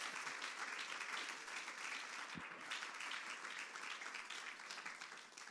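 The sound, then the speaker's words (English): A large crowd applauds steadily as a hand clap of praise to the Lord, dense overlapping hand claps sustained throughout at even volume, with faint voices mixed in and a single low thump midway. “Come on, give the Lord a hand clap of praise in this house right now.”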